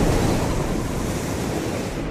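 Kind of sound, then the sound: nature, ocean waves and surf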